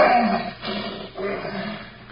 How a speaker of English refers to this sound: Quiet, peaceful. Except for the occasional roar of protest that comes from the throat of Sultan, the untrained lion that Victor Parnell had vowed he would break.